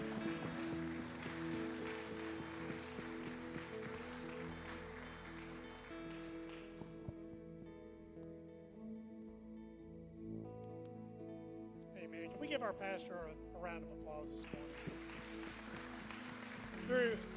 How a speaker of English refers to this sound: Come on and give the Lord one more hand clap of praise.